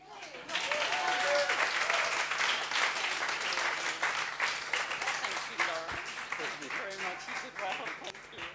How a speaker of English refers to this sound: You did really well. Thank you so much. Please, a round of applause for